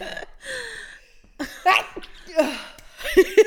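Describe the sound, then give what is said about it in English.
Several sharp, explosive sneezes burst out in quick succession, each a loud breathy blast separated by brief pauses and soft intakes of breath. “Oh, that sneeze just knocked every thought out of my brain.”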